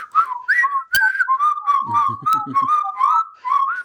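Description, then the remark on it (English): A person whistles the bright, bouncy theme tune of The Andy Griffith Show, with steady phrases of clear notes and brief pauses between them, and a faint low murmur partway through. “Just whistling.”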